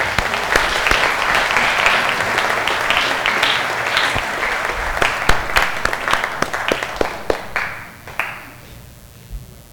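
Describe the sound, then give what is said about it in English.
A crowd applauds its graduates steadily for several seconds, a dense wash of clapping with sharper individual claps standing out, then thins to scattered claps and fades near the end. “Yes, one more big round of applause for our graduates.”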